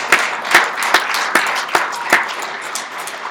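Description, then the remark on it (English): A crowd claps together in steady, dense applause, with a few sharper individual claps standing out at irregular moments over the continuous patter. “Yeah, let's give them a clap.”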